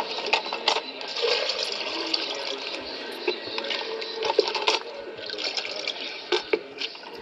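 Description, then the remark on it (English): Water pours steadily into a container for several seconds at a home whose water supply has been cut off, a continuous rushing splash broken by a few sharper knocks and splashes, with no voices. “You're having to take water?”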